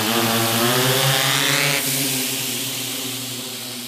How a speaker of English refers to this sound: We've got our flight path uploading. Drone's going to turn on